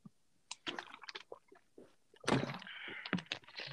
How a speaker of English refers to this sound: All right, hold up. Okay. Ugh. Sip of water.